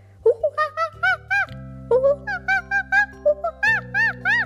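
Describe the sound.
A voice imitates monkey calls: quick runs of high, rising-and-falling whooping hoots in two bursts, fairly loud over a steady low humming tone.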